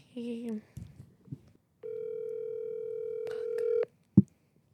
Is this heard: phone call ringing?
yes